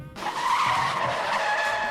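A car's brakes screech in a long, loud skid, a high squealing whine that holds steady for about two seconds with no voices over it.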